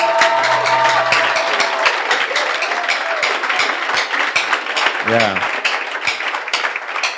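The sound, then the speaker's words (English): An audience applauds their pastor with steady, dense clapping that holds at an even loudness for about seven seconds, while a voice briefly speaks over the noise. “Let's give our pastor a big round of applause.”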